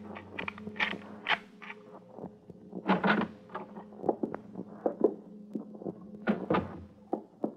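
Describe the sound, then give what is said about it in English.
A lock rattles and clicks through a series of sharp metallic knocks, then a door creaks slowly open with a drawn-out, groaning squeal, with no voices. “Try it. Yeah. It's locked. Here, I'll get it.”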